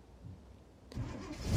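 A truck engine cranks and catches after a near-silent moment, its rumble growing louder and rougher as it comes to life, with no keys in the ignition. No one speaks.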